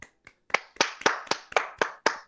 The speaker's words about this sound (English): Everyone give a round of applause for Crew Continuum, everybody.